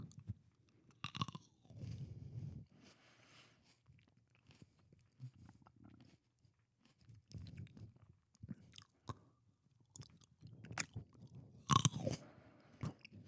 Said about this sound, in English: Got some juicies on me. Some crispy boys. Dude, chewing it normally is fucking gross. The only one worth anything is the original bite.